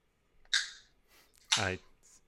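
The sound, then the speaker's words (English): A can's pull tab snaps open with a sharp crack and a short fizzing hiss, then a second, louder burst of hissing follows about a second later. “Is that the noise that it makes? Yes. Yes, I have a pull tab.”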